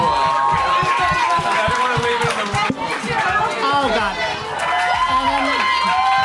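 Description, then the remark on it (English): A large audience cheers and shouts for the contestants on stage in a steady, loud roar of overlapping voices, with high whoops rising above the din throughout. “Can we all give a major round of applause for everybody we see on the stage?”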